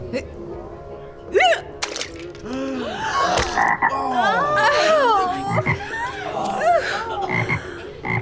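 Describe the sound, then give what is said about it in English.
A frog croaks repeatedly and loudly, its rising and falling calls overlapping in a busy, continuous stream for several seconds with no pause. “Is that a frog?”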